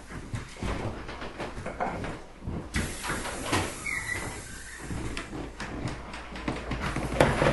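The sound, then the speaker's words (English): Wood creaks and groans repeatedly over a steady airy hiss, like timbers shifting and swinging, with dense overlapping sounds at moderate loudness and no voices. “You know, because even you hear the hissing of the air a bit, But I almost feel like I'm on a ship because it's creaking.”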